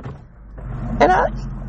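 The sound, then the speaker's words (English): A car's power window motor whines briefly as the window rolls down, a short rising electric hum over the steady low rumble of a vehicle interior. “you guys just heard me roll by a window down.”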